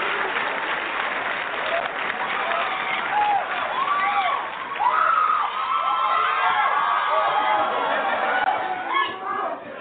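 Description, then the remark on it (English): A crowd applauds and cheers steadily for the whole stretch, welcoming a guest to read a selection from her book Tears for Water, with dense clapping under a wash of excited shouts and high whoops rising and falling throughout. “Please give a warm, deep-throated welcome”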